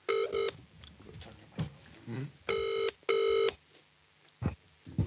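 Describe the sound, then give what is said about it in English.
A phone call ringing out while waiting for an answer: two pairs of steady electronic ring tones, each burst about half a second long, separated by pauses, with faint voices and background murmur in between. “Will we phone a special guest? Yes. Yeah, let's phone somebody.”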